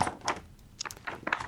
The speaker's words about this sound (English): That is, it's a proper, it's the bookseller. Sounds like paper. It is paper and it smells great.